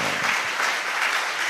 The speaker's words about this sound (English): And actually, the way you are clapping doesn't intimidate the devil at all.